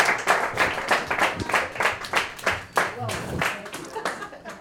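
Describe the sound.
A crowd applauds steadily, many hands clapping in a dense, continuous patter that stays fairly loud and close throughout, with faint voices mixed in underneath.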